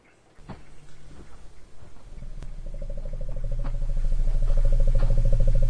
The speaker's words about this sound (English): Is that a tiger? That's an elephant. Wow. I've never heard an elephant. No, I've never heard them do that.